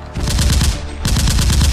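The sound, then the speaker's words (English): Loud rifle gunfire in two rapid automatic bursts, each a rattling string of sharp cracks, separated by a brief pause, as a soldier under heavy fire stands up and fires his rifle from behind a broken wall. No voices are heard. “Hank stands up, fires his rifle, and ducks behind the broken wall.”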